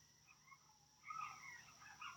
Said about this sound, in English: That sounds like it's in your backyard. Yeah. Hope you guys can hear that. Oh, my gosh. There's no frogs, but there are baby coyotes. That's kind of cute. I know. I'm like, oh my god, am I hearing these little yips?